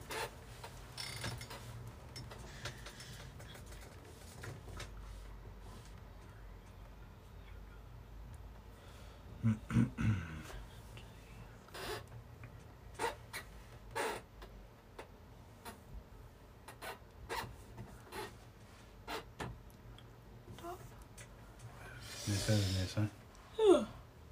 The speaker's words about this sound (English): ASMR with dice.